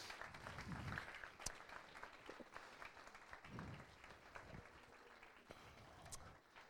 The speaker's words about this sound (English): So group leaders, you come, and you guys can clap for group leaders. They give a lot of time and energy.